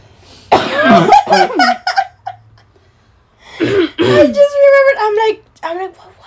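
Two loud bouts of strained coughing, each a fit of several raspy, wheezy bursts with a rough vocal edge, separated by a short quiet pause.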